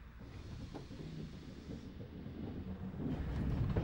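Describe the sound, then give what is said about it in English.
A single-coach train rolls slowly through a 5 mph speed restriction at Stearns, on the line to Hampton Lode, with a deep, steady low rumble and some wind buffeting, growing slightly louder toward the end, with no voices. “And as this is only a one coach train, of course, it doesn't take us long to pass it.”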